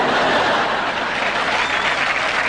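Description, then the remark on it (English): Steady, dense applause from a TV show studio audience, a continuous wash of many hands clapping at an even, fairly loud level with no voices standing out. “Why did they clap for that?”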